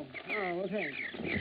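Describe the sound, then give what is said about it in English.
Birds cluck and coo in a steady, warbling run of throaty calls, fairly loud and continuous for a moment or two, while being fed. “I'm finished feeding my birds.”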